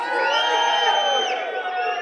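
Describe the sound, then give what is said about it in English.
A large crowd at a drum and bass set in the rain cheers and whoops loudly and continuously, a dense wall of overlapping shouts and high-pitched yells holding steady for a couple of seconds. “Somebody having fun, yeah? Somebody don't care about no fucking rain. Make some noise out there.”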